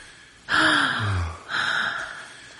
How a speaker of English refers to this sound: And you gasp in equal parts of shock and arousal.